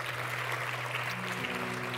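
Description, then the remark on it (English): A church audience claps steadily, a dense, even patter of many hands that holds at a constant loudness throughout, with a low sustained hum running underneath. “So give yourselves a big round of applause.”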